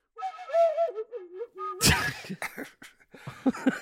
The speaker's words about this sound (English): What is that fucking whistle sound? It's a little flute that I have.